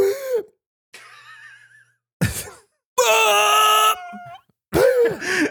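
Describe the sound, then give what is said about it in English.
A voice imitates choking, with strained, raspy gasps and groaning wheezes in several uneven bursts separated by short silences, some loud and harsh, others thinner and higher-pitched. “Until that moment where I literally could not breathe.”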